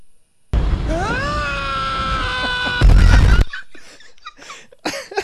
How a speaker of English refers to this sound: Are you saying that we need a male scream?